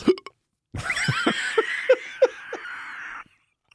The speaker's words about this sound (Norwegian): Hva var det? Det var dårlig time-hikk. Beklager. Jeg sitter, hikker litt, i studiet med en alkoholisert person som sitter og hikker.